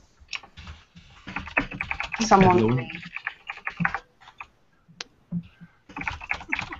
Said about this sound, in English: Sorry for all the mad typing. I'm spamming all of our IRC channels with this podcast to try and trap customers into listening.